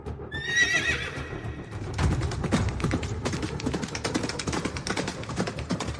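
A horse gives a loud, shrill whinny, then hooves pound rapidly and steadily as it charges at full gallop, a busy galloping clatter continuing to the end.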